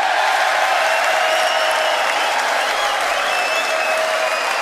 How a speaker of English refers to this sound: Okay, so on this one, he actually gets cheers from everybody. I mean, this is one of the loudest points of his State of the Union speech.